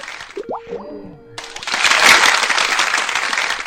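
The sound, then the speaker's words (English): A couple of quick springy, bouncing tones, then a sudden wash of crowd applause sound effect that swells and holds steady to the end, loud, with no voices. “I also need applauses when you get a chance.”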